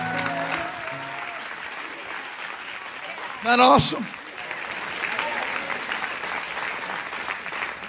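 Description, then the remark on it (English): A crowd at a church service applauds Jesus Christ steadily throughout, dense hand clapping filling the room while a man speaks briefly over it at the start, with a short loud burst of noise midway. “One more time, give a great hand clap to Jesus Christ, the King of Kings and the Lord of Lords.”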